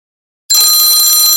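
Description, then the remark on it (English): After a brief moment of silence, a workout interval timer bell starts ringing during a foam roller stretching routine, loud, bright and continuous, with a shimmering metallic tone and no voices. “Nice and slow or a static hold, your choice, on the bell.”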